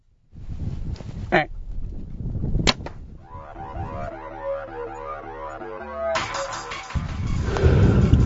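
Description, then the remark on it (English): A sharp snap of a bow shot and the smack of an arrow striking a large buck deer, scored 196 Pope and Young. One quick impact heard over steady outdoor rustle and wind, followed by lower droning, rumbling noise. “We just shot the biggest deer in my life, maybe the biggest deer I'll ever kill in my life.”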